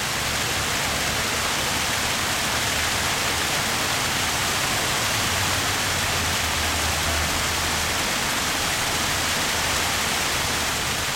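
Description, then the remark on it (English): A steady, dense roar of a waterfall pouring out of a tunnel near Mission Boulevard, continuous without a break, a broad rushing wash with a low rumble underneath, fairly loud, with no voices. “Everybody else already knows about this place because the waterfall comes out of the time tunnel. Like, I can see the tunnel entrance while I'm recording the water.”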